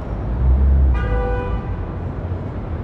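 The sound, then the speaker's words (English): A single short, bright taxicab horn honk at jaywalkers on 149th Street by the Grand Concourse station in Mott Haven, South Bronx, on a Monday at 8:27 a.m., about half a second long, rises over a steady low rumble of street traffic. No one speaks. “Every Monday at 8:27 a.m., the 2 train screeches to a halt at the Grand Concourse station, and the taxicabs blow their horns at the jaywalkers on 149th Street.”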